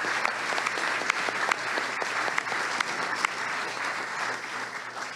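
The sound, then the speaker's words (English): An audience at an evening event applauds the event's partners steadily, a dense wash of many hands clapping at an even, moderate loudness with sharper individual claps popping out here and there, and no voices over it. “Actually, I want to give a huge round of applause just for all of these amazing partners here tonight.”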